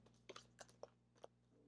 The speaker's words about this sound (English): This pile of action cards is really small, so it takes a little longer to shuffle because it's only a few cards.